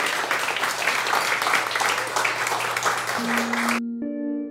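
A crowd claps steadily in a dense, sustained wash of applause for nearly four seconds as a speaker is welcomed to the stage, then it cuts off abruptly as a few sustained musical tones take over.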